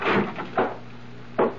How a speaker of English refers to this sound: I waited for the bedroom door to open. And it did.